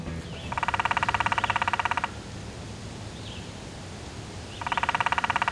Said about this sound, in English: That's a downy woodpecker, one of the most common woodpeckers in the United States. A woodpecker can peck 20 times per second.